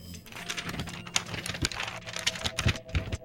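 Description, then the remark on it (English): Crisp paper rustling and crinkling as an envelope of viewer mail is torn open and the letter unfolded, with a quick run of scratchy snaps and crackles over about three seconds. “Opened the envelope.”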